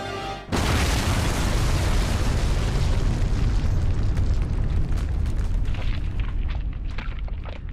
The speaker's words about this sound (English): The sound of the Somme River Bridge going up in smoke echoes across the mile to Piper and his SS troops.